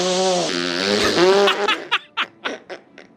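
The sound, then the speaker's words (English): Children blow a long, buzzy mouth-made fart noise lasting over a second, followed by a quick run of breathy giggles and snickers, fairly loud. “So I have, I think this is an hour long, a piece of audio of kids making fart noises.”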